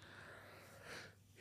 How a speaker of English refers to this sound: Sorry about the yawn